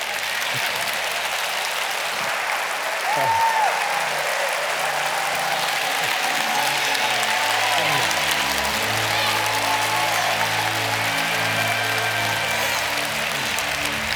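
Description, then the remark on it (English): A crowd claps steadily and loudly for the whole stretch, a dense wash of many hands at an even level, with faint voices and a brief whoop rising through it. “Clapping does something in your bloodstream to open up your veins and your arteries so that it is not stagnant.”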